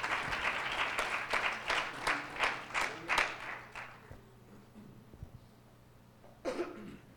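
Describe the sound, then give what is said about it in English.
At an evening church service, a seated audience gives the Lord a hand clap of praise, a dense, bright patter of many hands that holds for a few seconds and then trails off, followed by quiet and one short final burst. “Why don't you give the Lord a hand clap of praise as you're seated tonight.”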